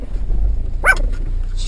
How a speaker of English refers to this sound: My little dog.